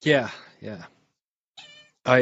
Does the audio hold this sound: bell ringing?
no